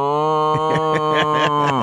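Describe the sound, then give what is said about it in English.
A person gives a loud, drawn-out vocal imitation of a cow's moo, like those in the Do Your Moo contest at the State Fair, a single low sustained tone with a rough, pulsing texture that bends downward at the end. “But we used to do the Do Your Moo contest.”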